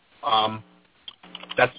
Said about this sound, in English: That's my email address. I'm just typing it in for everybody.